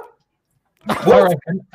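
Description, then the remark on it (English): After a brief silence, a dog barks: one loud, rough bark followed by a couple of shorter, quicker barks. “Anyway, my hot take is my very specific hot take is if my dog will let me get a word in edgeways.”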